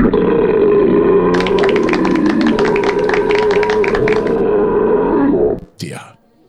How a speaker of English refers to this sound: Oi, was that a belch?